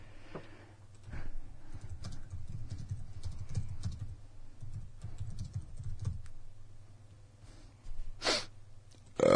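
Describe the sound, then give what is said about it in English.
Quick, uneven typing on a computer keyboard as someone does a Google search, clattering for several seconds in a run of light key clicks with short pauses, followed by a louder burst or two near the end. “No, I'm going to do a Google search.”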